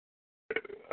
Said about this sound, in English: And I had the belch.